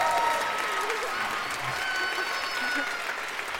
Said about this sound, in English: Even the woman who is planking managed to applaud.